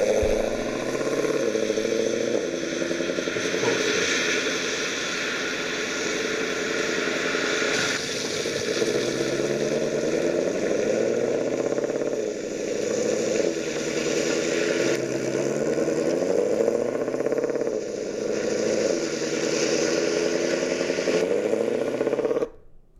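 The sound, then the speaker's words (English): A big five-liter car engine idles with a deep, throbbing rumble, its pitch wavering slightly now and then, running steadily for over twenty seconds with no voices. “That sounds to me like the 5 liter, though.”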